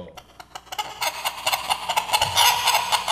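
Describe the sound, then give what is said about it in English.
Chickens cluck in quick, irregular bursts at the start of a song, fairly loud, the clucking growing busier and denser over a few seconds. “It's very chickeny.”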